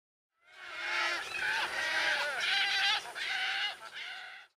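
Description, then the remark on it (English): Wood stork calls: a loud chorus of harsh, nasal, rasping cries running almost continuously for about four seconds in several overlapping bursts, with no talking. “The wood stork.”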